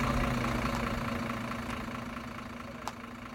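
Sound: bus engine idling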